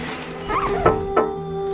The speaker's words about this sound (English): What is that sound? Is someone knocking on the window? Hold on. Let me get the curtains.